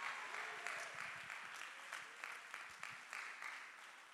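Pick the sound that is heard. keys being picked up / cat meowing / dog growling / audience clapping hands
audience clapping hands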